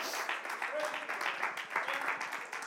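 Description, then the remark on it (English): A large church audience claps their hands unto the Lord in praise, steady, dense applause throughout, with faint voices mixed into the clapping. “Would you clap your hands unto the Lord one more time in the name of Jesus?”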